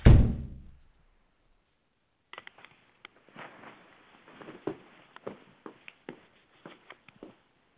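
A house's front door thuds shut at night with a deep, booming knock that fades out, followed after a short pause by a scatter of light clicks and rattles, like a latch and handle settling.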